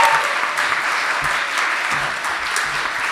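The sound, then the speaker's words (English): An audience at a True Stories Live storytelling event at Norwich Arts Centre claps steadily throughout, a dense, loud patter of many hands with a few sharper individual claps standing out, sustained at an even level without pause. “Yeah, trust my brother to have already had a round of applause before I've got on stage.”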